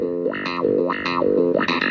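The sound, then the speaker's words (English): A funky clavinet riff played through a wah-wah pedal on the lower half of a split keyboard, its bright, buzzy tone sweeping open and closed about four times in two seconds. Loud, with no voices. “Down at the bottom, I got the clav with the wah.”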